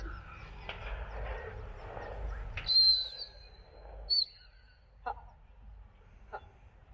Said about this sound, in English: Also, just to let you know, obviously, he's still learning the drop whistle as well. So our drop whistle is used for emergencies with hare chases mainly.